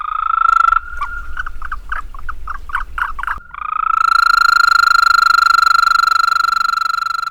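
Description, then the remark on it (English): An Eastern American toad gives a long, steady, musical trill, loud. A brief burst of choppy, pulsing calls interrupts it before the sustained trill resumes and carries on to the end. “First, I'm going to play the Eastern American toad for you, and then I'll play the Fowler's toad for you.”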